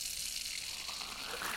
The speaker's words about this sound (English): At first, it just sounded like water running, sounded like somebody smashing up newspaper or wrapping paper. Things were just very robotic.